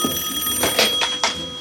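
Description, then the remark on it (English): A telephone bell rings in a rapid, jangling rattle, loud, with a steady metallic tone underneath and no voices. “Here's the big phone call.”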